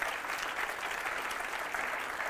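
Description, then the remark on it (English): An audience claps steadily, a dense, even wash of many hands with no clear individual beats, holding a constant level throughout. “I'll wait while you clap.”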